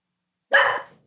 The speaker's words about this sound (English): Of course, the dog barks.